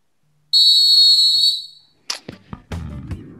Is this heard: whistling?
yes